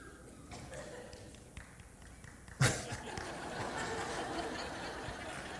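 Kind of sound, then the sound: crowd, audience clapping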